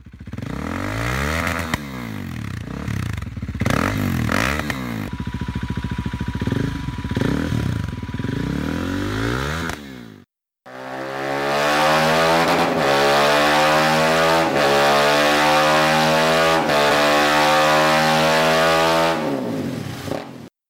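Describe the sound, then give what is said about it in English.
A KTM RC390 motorcycle on a dyno revs hard in repeated bursts, pitch sweeping up and down, then after a brief pause holds a long steady high-rev roar with a dense harmonic exhaust note, loud, no talking. “KTM RC390s first up.”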